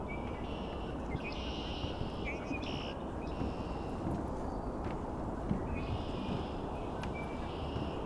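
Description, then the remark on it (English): A handful of red-winged blackbirds give repeated buzzy, trilling calls, several overlapping in bursts, over a steady rushing background noise. No one speaks. “This is only a handful of red-winged blackbirds.”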